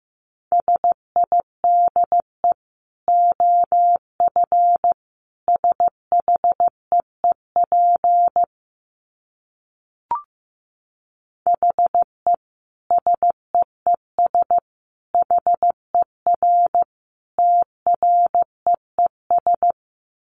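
Morse code sent at 15 words per minute: a steady mid-pitched beep keyed in quick dots and dashes, grouped into words with short pauses, no voices.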